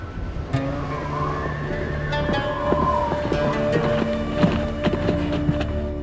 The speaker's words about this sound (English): When Sarah Leah heard the sound of horses' hooves outside, she pulled herself out of bed and staggered to the window.